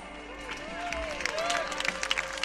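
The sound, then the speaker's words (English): A huge open-air crowd of more than 100,000 people near the Brandenburg Gate on October 3rd, 2009, the 19th anniversary of German reunification, claps and cheers: dense overlapping applause mixed with scattered shouts, whistles and a steady wash of many voices, spreading wide. “I am in a crowd of more than 100,000 people near the Brandenburg Gates to watch the spectacle of two giant puppets”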